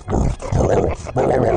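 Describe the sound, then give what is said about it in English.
A person on all fours barks like a dog in three loud, rough bursts separated by brief pauses, with no other talking. “He's on all fours and just barking like a dog now.”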